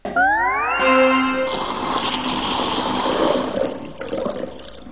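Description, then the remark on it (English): Rising whistly tones slide upward, then a loud rush of water gurgles and drains out of a bath steadily for a few seconds before tapering off. No one speaks. “Aha, the water's all gone now and there's some letters on the bottom of the bath.”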